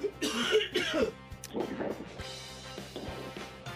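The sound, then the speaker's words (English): A coughing fit from a person getting over a cold: several harsh, raspy coughs in quick bursts, then a few weaker hacks and throat-clearing sounds trailing off, with no talking. “I'm still getting over a little bit of a cold and a cough.”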